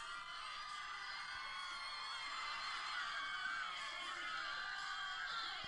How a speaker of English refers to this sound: It's we take over the whole stadium, Petco Park, where the Padres play. Look at this. He can post a video online if you want. Mm-hmm. It's the whole crowd cheering.